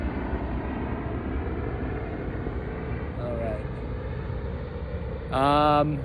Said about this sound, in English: Chopper flying by.